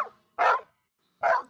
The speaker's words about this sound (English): And then he started jumping and barking, like saying, "Thank you, little girl."